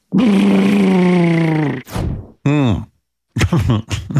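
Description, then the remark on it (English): A voice imitates Catwoman's cat purr on The Howard Stern Show, rolling R's in a long, steady rolled-R trill lasting over a second, followed by a few short, breathy vocal bursts and throaty sounds. “She can't really purr effectively unless she rolls her R's.”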